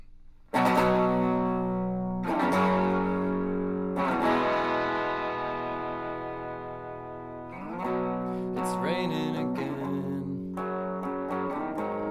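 A solo electric guitar plays an intro, ringing chords struck a few times and left to sustain, thick with distortion and effects, followed by a brief wavering, bending phrase near the end.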